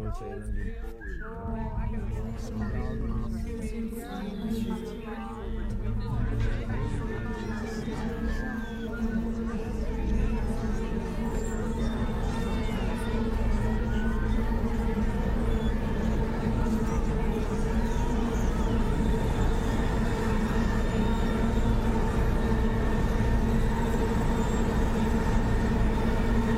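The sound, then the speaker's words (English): A dense montage of overlapping everyday sounds from 25 July 2020, pulled out by a script because each was a B flat: snippets of voices, rumbling transport and hums, layered into one sustained drone holding the single pitch of B flat, steady and fairly loud throughout. “a script for me that pulled out every sound that happened in that day that was sent to me that was a B flat”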